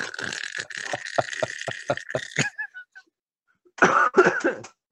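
A harsh run of rapid coughs and raspy throat sounds lasting a couple of seconds, a brief quiet pause, then a second shorter burst of two or three loud coughs.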